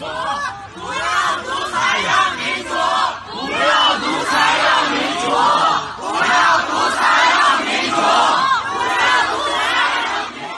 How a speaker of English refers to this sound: Here's just 10 seconds, roughly, of some of the protests that erupted in China.